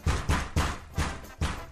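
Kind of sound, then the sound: household object, knocking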